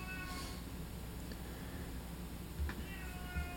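A cat meows softly during a recording take, a drawn-out cry at the start and another brief mew later, heard faintly over a steady low background hum with no one talking.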